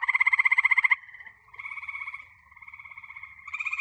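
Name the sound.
frogs croaking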